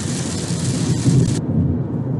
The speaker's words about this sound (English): I'm not sure if you can hear that, but it just started pouring down rain here as I'm driving. So I'm going to pause this for a minute and see if the rain slows down.